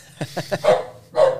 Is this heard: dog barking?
yes